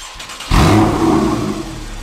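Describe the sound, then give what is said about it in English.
An aftermarket car exhaust rumbles at a low idle, then a sharp, loud rev kicks in and the deep, throaty engine note holds strongly, with no talking. “Without further ado, let's take a listen and see what this exhaust sounds like.”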